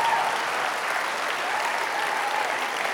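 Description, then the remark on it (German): Steady audience applause for illustrations fills the whole stretch, a dense, even patter of many hands clapping at moderate volume with no talking over it. “Ich darf gerne Applaus geben unseren wunderschönen Illustration.”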